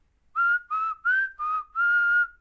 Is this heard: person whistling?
yes